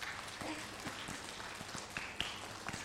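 A group gives everybody a standing round of applause, clapping steadily for a few seconds, a dense wash of many hands clapping with sharper individual claps popping through. Nobody speaks over it.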